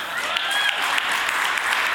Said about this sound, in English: But if you're going to put me on the spot like that with a question that I don't know anything about, but based on the few hand claps, maybe I was kind of in the right area. Maybe. Or maybe they're just trying to be nice.